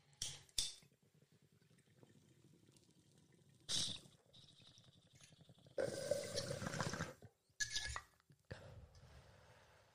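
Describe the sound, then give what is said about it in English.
A few sharp lighter flicks as sativa cannabis is lit, then a sustained burst of gurgling, bubbling water, followed by another short bubbling pull and quieter hiss, with no one talking. “Always love to light it up.”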